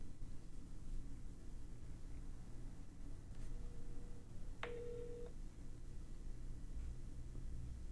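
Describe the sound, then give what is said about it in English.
A brief electronic ringing tone from an outgoing phone call placed through Siri sounds once midway through, fairly soft, over a steady low rumble of background noise; no one speaks. “Nope, it's ringing.”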